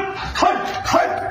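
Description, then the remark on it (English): A person barks like a dog at a stranger, giving two quick, loud, gruff barks about half a second apart, with no other talking. “You don't bark at a perfect stranger.”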